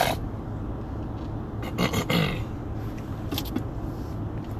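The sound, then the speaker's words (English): An angle grinder fitted with a sanding pad sands wood during carving, spinning at up to about 8,000 to 12,000 RPM. It makes a continuous rough, raspy whir with brief louder scraping surges as pressure shifts. It is moderately loud, with no talking. “So I use my angle grinder with a sanding pad on it.”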